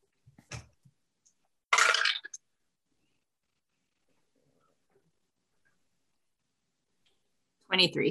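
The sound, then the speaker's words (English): Percentile dice clatter briefly across a hard surface in one quick tumble, followed by a long quiet stretch. Short voice sounds come just before the roll and again at the very end. “All right, roll me percentile dice, please.”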